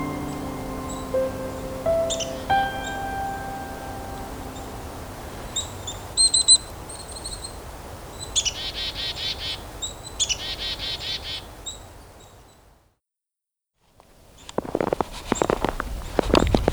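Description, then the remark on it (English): Wild birds, including black-capped chickadees whistling their song, call and chirp in a winter woodlot of cedar, poplar, birch and maple beside a road during a Christmas bird count near Hanover and Walkerton, with short repeated bursts of high twittering and scattered tweets, a brief silence, then more calls over faint rustling. “The following was recorded while participating in the 44th Hanover Walkerton Christmas bird count.”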